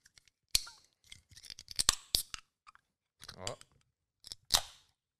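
A can of fizzy tropical passion-fruit drink being cracked open: several sharp metallic clicks and snaps, then a crisp pop followed by a brief airy fizz, with some faint murmuring in between.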